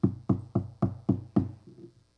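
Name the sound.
knocking on a door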